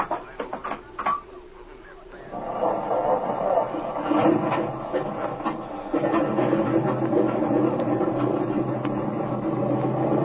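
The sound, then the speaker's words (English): A few sharp clicks and knocks, then a repaired airplane engine, whose faulty spark plug had cracked porcelain, catches and settles into a loud, steady, rumbling drone that holds without a break to the end. “She sounds better now, doesn't she”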